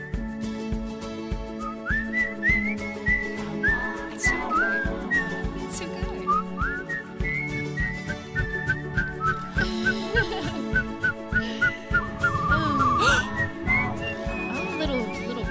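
A bright, melodic whistled tune rides over a full band backing, the whistled notes gliding and trilling in a lively rhythm throughout the song, with no talking.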